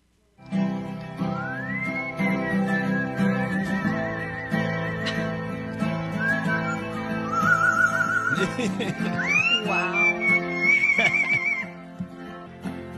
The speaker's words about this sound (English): Hey, I found a pretty good singer. In the form of a bird. So a guy was trying to play the guitar, and the bird just like, hey, let me sing along. So listen to this.